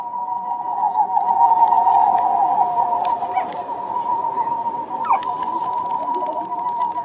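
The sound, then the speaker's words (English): A flock of Birmingham roller pigeons fitted with special pigeon whistles produces a steady, wavering drone of several overlapping whistling tones that fills the whole stretch, with a brief pitch swoop near the end. “This is Nathaniel Mann's recording of a flock of Birmingham roller pigeons wearing special pigeon whistles.”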